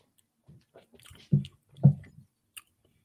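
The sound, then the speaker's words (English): Quiet mouth sounds of someone sipping a peach lemon beer, a shandy made with lemon juice: a couple of soft wet slurps and gulps about half a second apart, with small lip smacks before and after, no talking. “Hit it with the nose. One sip.”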